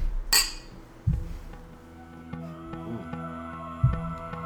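Glasses clink together once in a toast, a sharp bright tap followed by a lingering ringing tone that slowly fades, with a couple of soft low thuds afterward and no talking.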